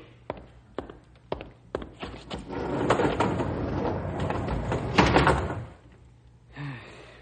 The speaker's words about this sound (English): Close the doors